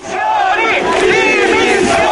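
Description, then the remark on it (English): A large crowd of protesters in the streets of Rome near parliament, clashing with riot police, shouts and yells "Resign" at politicians, many overlapping raised voices forming a loud, sustained roar with no break for over two seconds. “Resign, they shouted at the politicians.”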